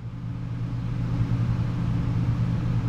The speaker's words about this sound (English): Can you hear the air conditioner? Yeah, we promised you an episode with the AC on.